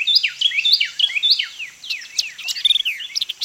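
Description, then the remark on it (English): Songs of a Carolina wren and a white-eyed vireo, declaring their territories in the morning in the Big Cypress swamp, overlap in a lively stream of clear, rapid whistled phrases and chirps, continuous, with no voices. “By this time, other birds have awakened, and Carolina wrens and white-eyed vireos are declaring their territories.”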